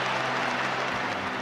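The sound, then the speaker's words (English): A crowd at a nonpartisan evangelical gathering applauds and cheers after Reagan tells them he endorses them. It is a dense, steady wash of clapping and voices that stays loud and even throughout, with no single voice standing out. “And the crowd went wild.”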